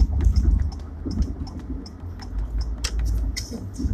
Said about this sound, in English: I should turn signal. You hear that? Yes, I'm doing something good. Well, in this new car, there's all these features that if you don't use your turn signal, it, like, calls you a bad driver, basically.